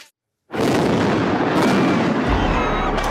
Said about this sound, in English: Explosions rocking the Belarusian capital a few hours after polls have closed. Riot police is blocking the entrance to a large square and is firing stun grenades into the crowd.